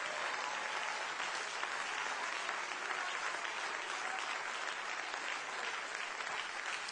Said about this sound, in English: Now let's give the Lord a great big apostolic hand clap of praise.